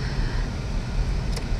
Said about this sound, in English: But, oh, this traffic though. Sorry guys, I'm getting distracted. The traffic is crazy this morning.